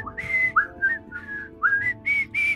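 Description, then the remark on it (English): Several people whistle a bouncy, marching melody together in short rising phrases of clear, bright notes, fairly loud over a faint low background hum, with no talking. “And you all start whistling.”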